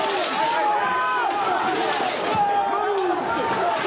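A loud, chaotic crowd of rioters shouts and yells in a dense, continuous roar, with scuffling and jostling noises as the mob surges forward and breaks through a barrier outside the US Capitol, knocking a Capitol Police officer to the ground.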